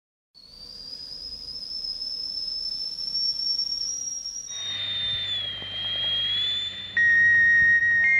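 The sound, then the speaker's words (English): A tea kettle whistles steadily in a high, piercing tone, its pitch wavering and dipping as steam hisses beneath it, growing louder and shriller near the end. “Whistling tea kettles have been letting off steam. It's just a great, sweet sound.”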